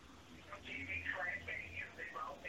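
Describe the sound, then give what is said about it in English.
A caller snorts into the phone to a Holiday Inn hotel: snorting and nasal grunting come through a thin, telephone-filtered line in a run of close, uneven bursts over about two seconds, with a low hum underneath. “I didn't know if you were done snorting on the phone.”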